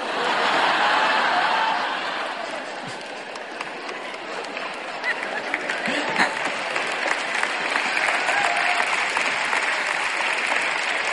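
An audience applauds in a steady, dense wash of clapping that runs the whole time. It is slightly louder at the start, eases briefly, then holds even, with no talking over it.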